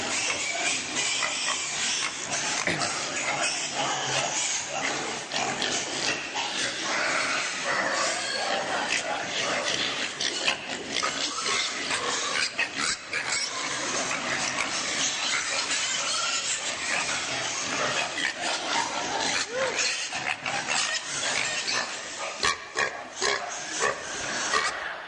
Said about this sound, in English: And in order for you to understand it, I took a little video of the pigs. So I just wanted you to kind of enjoy this for a moment. Couldn't bring the smell.